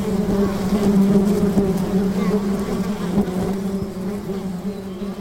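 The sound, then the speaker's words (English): A dense, steady buzz of a hanging swarm of bees clinging onto each other, layered and continuous with a strong low drone and shifting overtones, fading slightly toward the end. “As you get closer, you can see the bees clinging onto each other in a hanging, writhing swarm.”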